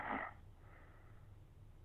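A single short, nasal snore rasps out at the very start, then fades into quiet, low background hum with no voices.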